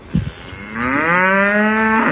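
cow mooing

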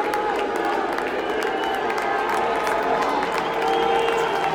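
stadium crowd booing

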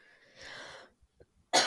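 coughing

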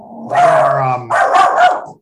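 dog barking

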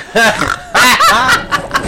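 duck quacking sound effect

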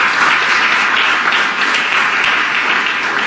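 applause

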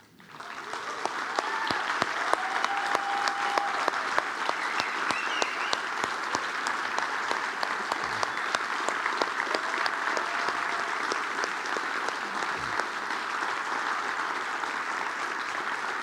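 audience applauding

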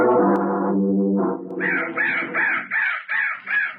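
crow cawing

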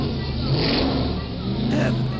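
pickup truck burnout

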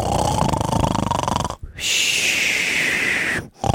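loud human snoring

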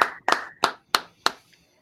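hands clapping

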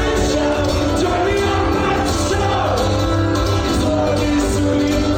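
concert crowd singing along

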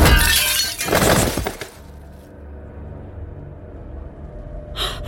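mirror glass shattering

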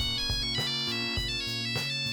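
nokia mobile phone ringtone

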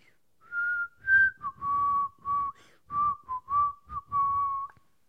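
person whistling a tune

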